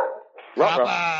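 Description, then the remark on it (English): A dog, Goomba, barks at the mail carrier arriving: a loud, high-pitched bark that stretches into a sustained, harmonic yowl, preceded by a brief stretch of quieter mid-pitched sound. “Oh, the mail person is here early today.”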